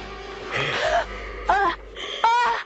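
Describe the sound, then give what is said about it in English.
A woman being strangled in a film scene, heard over a phone, gives three strained, choking gasps, each a short voiced rasp that bends up and down in pitch, with brief pauses between them and no talking. “Let's listen to …'s strangling again, because over the phone, Lori can't even tell which is which.”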